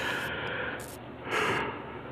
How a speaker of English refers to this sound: Amen. I knew the yawns were coming already. And it's still in the afternoon.